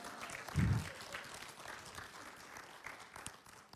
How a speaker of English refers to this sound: You ought to clap better for that. That was good preaching right there.